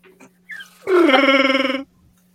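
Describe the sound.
A voice imitates a Wookiee roar: a short rising yelp, then a loud, rough, warbling growl held for about a second before cutting off, alone.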